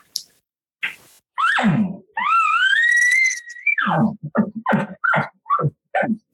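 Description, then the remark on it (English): An imitated elk bull bugle made with a reed and tube call: a low growl rising into a long, high whistling squeal, then a series of short, grunting chuckles at the end. “And I said, you know, there's been times where I've grabbed my reed and grabbed my tube. And I said, okay, did the bull start off like this?”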